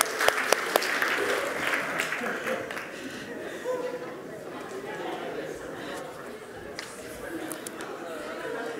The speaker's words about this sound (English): Give them a clap. That was amazing.